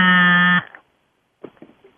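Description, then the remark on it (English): A phone left on vibrate gives a single loud, low, rasping buzz that holds steady for about half a second and cuts off abruptly, followed by faint murmuring voices. “I heard that someone left their phone on vibrate.”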